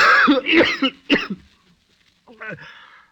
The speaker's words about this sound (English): Why does that blasted cough?